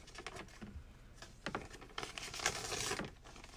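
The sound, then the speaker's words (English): Paper rustles and crinkles for a few seconds, with soft scattered crackles and a brief louder swish of a sheet being shuffled and handled, no voices. “Give me my own piece of paper. See?”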